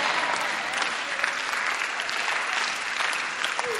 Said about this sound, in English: Oh, if you are clapping for Abraham, I think you should clap properly for Abraham.